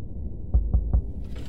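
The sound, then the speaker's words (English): Three dull, evenly spaced knocks on a door in quick succession, low and thudding against a quiet hum, followed by a soft hiss as the knocking stops. “Well, are you going to stand there for hours, darling, or do you think you'll muster up enough courage to knock any time soon?”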